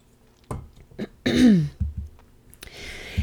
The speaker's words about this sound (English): Now, one other thing after I grab a sip of water that I want to talk about.